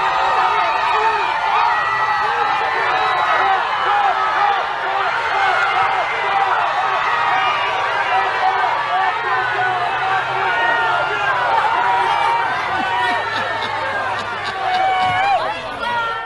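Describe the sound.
A large crowd screams "Trump" nonstop at Joe Biden's passing motorcade in Allentown, many overlapping voices loud, with a faint low rumble of traffic underneath as the noise holds steady throughout.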